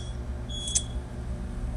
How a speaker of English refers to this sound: I got a little beeping there. Is that too annoying?